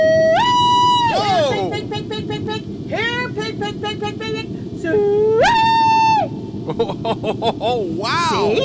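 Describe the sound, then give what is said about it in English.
A person in a bunker bellows a loud pig call: long, piercing high-pitched whoops that swoop up and hold, repeated about four times with quick warbling yodel-like bursts in between, over a steady low rumble. “I call a pig.”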